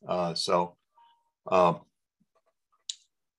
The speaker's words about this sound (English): That's our timer, by the way.